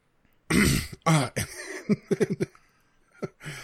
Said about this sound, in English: and then I have to cough and clear my throat.